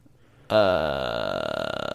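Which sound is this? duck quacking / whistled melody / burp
burp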